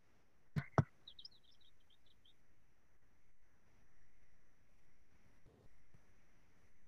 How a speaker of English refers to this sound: And also this common yellow-throat, another very common bird that you'll see and hear on the Greenway. They've got a witchetty witchetty song.